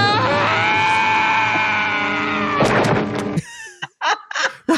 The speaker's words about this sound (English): Actually, okay, that Wilhelm scream is there. It's close.